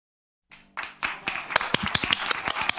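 Applause for someone who broke a record starts after half a second of silence, a few scattered claps quickly building into brisk, irregular clapping from a small group of hands, loud and sharp, with no voices over it.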